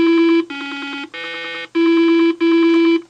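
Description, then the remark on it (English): Electronic tones from Simon, Milton Bradley's late-1970s four-tone puzzle toy, play alone: five steady, buzzy beeps of about half a second each, forming a sequence with a lower middle note and the same bright pitch returning at the end. “By the late 70s, toy and game makers Milton Bradley proved that with just four tones, you could make a toy that helped define a generation.”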